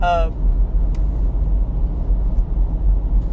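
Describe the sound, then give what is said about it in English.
Steady low rumble of a car interior in traffic, a constant engine and road drone filling the low end, with a brief voice at the very start and faint ticks. “I am currently stuck in traffic.”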